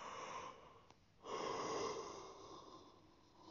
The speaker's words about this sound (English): Was a yawn, so please ignore that.